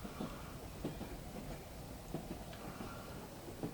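A train rolls steadily along the rails, a continuous low rumble broken by irregular clacking knocks from the wheels over track joints, with no voices.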